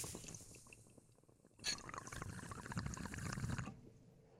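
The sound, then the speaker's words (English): A gurgling burst of bubbling water from a water pipe as someone takes a hit lasts about two seconds, rising sharply and then cutting off, with quieter liquid rustling before and after. “Was that you that just hit that? Because that sounded sick.”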